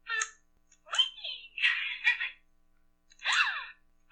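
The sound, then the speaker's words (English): A talking doll, set off by pushing a button on its lower body, lets out a series of high-pitched, breathy gasping sounds: four short electronic vocal bursts with brief pauses between them, fairly faint and with no other voices. “And if you push those, she makes these sounds.”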